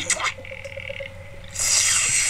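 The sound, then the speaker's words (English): People slurping tea: a few short wet sips, then a longer, louder airy slurp that carries on to the end. Nobody speaks. “They're slurping tea in case you're interested.”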